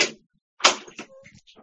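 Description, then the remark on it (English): A door closes as people leave at last call: a brief bump, a short pause, then a solid thud followed by a faint rattle and creak of the latch settling, with no voices. “I just heard the door close, so we'll leave it at that.”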